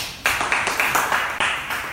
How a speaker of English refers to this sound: Let's clap for our DJ.